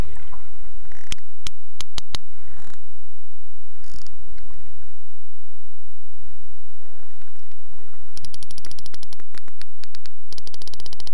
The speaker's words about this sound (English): The sperm whale makes this clicking sound by pushing air through the space in its big hollow head.